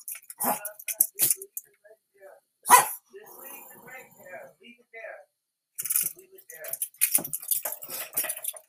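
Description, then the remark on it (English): A dog named Lily barks repeatedly while playing in its backyard, sharp loud yaps in scattered bursts, with a person talking in the pauses between barks. “Yeah, I heard you out there barking, playing in your yard.”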